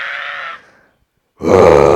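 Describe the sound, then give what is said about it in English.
A guest's strained, tonal vocal cry that trails off, a short silence, then a loud, raspy, full-throated emo scream that cuts off abruptly, with no talking. “I'm going to start doing this thing where for the guests, I'm going to try to get their best emo scream.”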